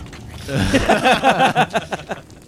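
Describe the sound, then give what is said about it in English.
A voice imitates the crackling lightning breath of a creature in a role-playing game: a rapid run of buzzy, rattling vocal pulses, fairly loud at first and tapering off over about two seconds. “I want a lightning breath.”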